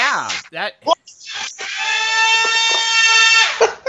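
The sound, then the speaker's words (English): Brief excited talk gives way to a flying toy's steady, whiny motor buzz, loud and even-pitched for about two seconds as it moves through the living room, before a voice returns. “It flies in the air through the living room and crashes into things.”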